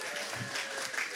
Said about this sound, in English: Y'all gonna have to run. They're clapping. They've been clapping a while.